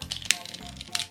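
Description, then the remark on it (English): A short riffle of playing cards being shuffled, a quick flurry of papery clicks with two brighter snaps, heard alone over about a second. “But here's my catchphrase. Here's that good shuffle.”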